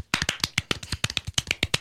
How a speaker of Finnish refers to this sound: Tehdäänkö silleen, että annetaan vielä toiset aplodit ihan hänelle, että hän ei allekirjoittanut tätä sopimusta?